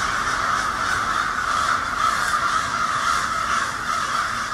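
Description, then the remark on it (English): Hundreds of crows perched in the trees caw loudly and continuously, dozens of harsh overlapping calls merging into a dense, raucous wall of noise with no pauses and no talking. “It's like hundreds of them on every twig of every branch of every tree. And they're all screaming.”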